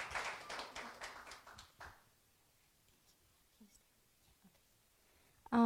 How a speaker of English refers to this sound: So if we can give a round of applause to her as well.